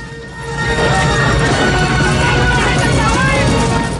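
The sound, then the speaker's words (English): Horses ridden by riders, among them Rambo, gallop in a chase in a loud, dense rush of hoofbeats, continuous, swelling after a brief quieter start and blending into a thick wall of noise with possible shouting mixed in. “The other riders join the chase.”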